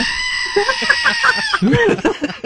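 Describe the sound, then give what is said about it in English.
A loud human scary scream with a wavering, bleating quality much like a goat, breaking into a second quavering cry near the end. “Actually, it sounds an awful lot like a goat.”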